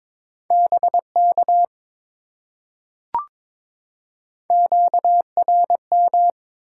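Brisk Morse code at around 22 words per minute, sending common amateur radio contact (QSO) elements: a steady mid-pitched tone keyed in quick dots and dashes, two bursts of characters separated by a pause with a single sharp click.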